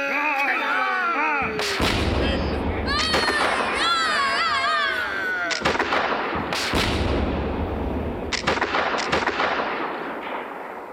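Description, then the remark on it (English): A pirate ship's cannon broadside, fired at a larger enemy ship, thunders in a rapid series of heavy booms, each blast sharp and loud, with shouting voices and whistling tones weaving through the barrage. “Shall we give one more broadside and finish the pig?”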